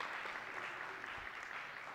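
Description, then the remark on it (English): An audience claps steadily for a couple of seconds for people who helped out, a dense, even wash of many hands with no single claps standing out and no voices on top. “Give these guys a round of applause for helping us out.”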